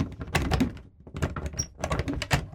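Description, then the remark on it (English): A rapid series of knocks on a door, repeated thuds in two bursts with a short pause between them, fairly loud, with no voices. “Hello? Is there anyone in there? Could someone open this bally door?”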